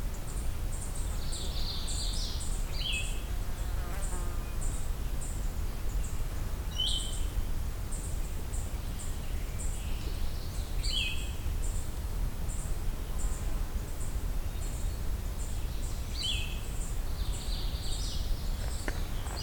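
A blue-headed vireo and a magnolia warbler sing short, scattered phrases, set against a low outdoor rumble and a steady, faint high-pitched ticking.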